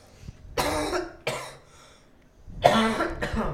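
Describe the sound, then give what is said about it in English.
A person coughs several times in a row, harsh rough bursts with short pauses between them, the last two coming quickly together. No talking. “Sorry, guys. Cough button.”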